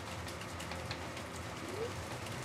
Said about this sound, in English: I didn't realize it was raining out there.